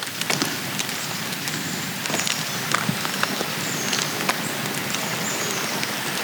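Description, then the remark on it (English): A dense, steady patter of countless tiny ticks and taps from swarming, mating ladybugs stacked on each other, sounding just like light rain falling, continuous and even throughout with no voices. “And it sounds like it's raining, but it's just the ladybugs all fucking each other.”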